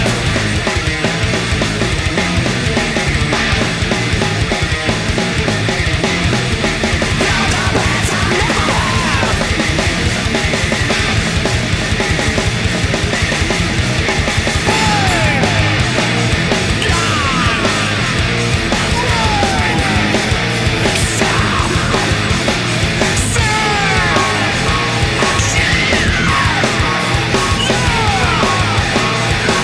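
A loud, dense heavy metal track from 2002 plays throughout, with pounding drums, distorted guitars and harsh yelled vocals riding on top of the wall of sound.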